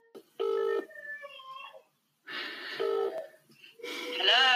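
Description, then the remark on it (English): Two short electronic tone bursts from a phone, like keypad dialing beeps, as someone calls back a person who dropped off a group call, separated by a pause and mixed with breathy, warbling noises and a rising electronic chirp at the end. “So hang on a minute. I'll call you.”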